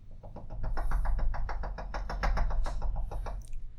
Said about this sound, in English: The door's locked again. Of course. My last bit of advice is knock hard to get there. And she does her little kind of rapid knock.